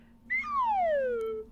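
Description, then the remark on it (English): A single descending slide whistle, a clear, fairly loud tone gliding smoothly downward in pitch for about a second before cutting off, with no talking. “And I actually think that the down slide whistle is going to come in handy here.”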